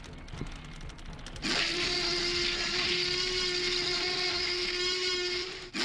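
A few faint handling clicks, then a phone ringtone plays a roar at the phone's full volume: a loud, harsh, buzzy growl with a steady droning pitch that holds for about four seconds before cutting off abruptly.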